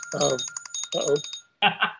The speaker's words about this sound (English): Answer that phone. We don't need that right now. So, sorry about that. Guess I need to turn that off.